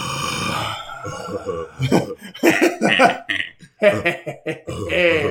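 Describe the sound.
A person imitates heavy, raspy breathing heard in a film scene where characters are being watched. A run of loud, breathy huffs and throaty exhales comes in an uneven rhythm, with a brief pause partway through.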